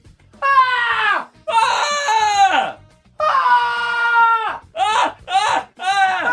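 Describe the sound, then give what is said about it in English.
A voice imitates two people screaming back and forth at each other about 100 metres apart along a street: loud, strained, wailing shrieks, a few long drawn-out bursts giving way to shorter rapid ones, with no words between them. “So I just start screaming like this.”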